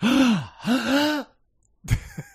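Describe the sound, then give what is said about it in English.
A person lets out two loud, drawn-out voiced gasps in quick succession, then after a brief silence gives a shorter, sharper breathy intake. No words are spoken. “Wow, you waited till the end of the whole self-flagellating thing to gasp.”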